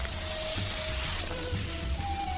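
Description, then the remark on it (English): Sand pours out of shoes in a steady, grainy hiss that runs unbroken for a couple of seconds at an even level, with no one speaking. “Hold on, I gotta dump out my shoes.”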